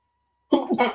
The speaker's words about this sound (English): So the shopping list, the things that, you know, those thoughts are still going to come like they came before, but you can just, I'm just going to sneeze.